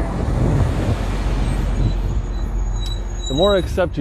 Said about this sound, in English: This truck's gonna drive by.